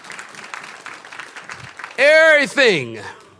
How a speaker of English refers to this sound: Somebody clap your hands and say, that's right, Pastor.